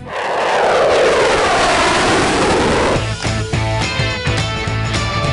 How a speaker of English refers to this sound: Yeah, get used to that sound. Milwaukee Air and Water Show returns this week. Means the next couple of days. Fighter jets buzzing the town.